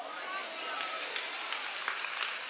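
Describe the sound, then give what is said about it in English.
An audience claps steadily, a dense wash of many hands that holds at an even, moderate level for a couple of seconds. “I didn't expect claps on that.”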